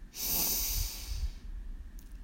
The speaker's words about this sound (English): We begin by taking 3 deep breaths from the bottom of our belly. We breathe in and out with a loud sigh. Breathe in and out with a loud sigh. And our 3rd breath in, breathe in